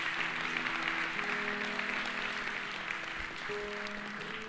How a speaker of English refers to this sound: Well, if this made any sense to you today, would you give the Lord a hand clap and say, yeah, amen.